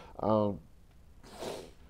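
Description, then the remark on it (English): A short voiced grunt is followed by a breathy, noisy nasal snort or sniffle lasting about half a second, moderately loud, from a host speaking live on a stock-market show from Denver, Colorado. “My nose is kind of coughing up there.”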